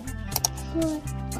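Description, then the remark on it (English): A voice imitates a pig's snort for Daddy Pig in Peppa Pig, a short nasal grunt, with a couple of quick clicks just before it and a low background hum throughout. “Petit jeté. Snort.”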